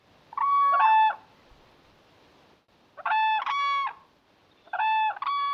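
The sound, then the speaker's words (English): Whooping cranes, tall white North American cranes, give mating calls in three loud bursts of ringing, trumpet-like bugling. Each burst is a rapid two-note phrase, with short quiet pauses between them and no voices. “And here is why they are called whooping cranes.”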